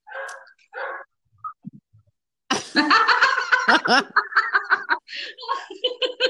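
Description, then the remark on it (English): A pet dog gives two short, sharp barks, followed after a pause by a stretch of people laughing and chuckling. “And Look, that is my oh dog God, barking in”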